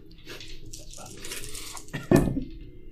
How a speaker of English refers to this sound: Oh, that's a natural 20. I need to roll over the dice.